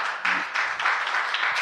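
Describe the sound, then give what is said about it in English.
An audience claps together in steady, dense applause that fills the whole moment without pause, a crowd of hands fairly loud, with no clear voices standing out. “Let us clap for everyone else that serves really on a daily basis as well on every Sunday here.”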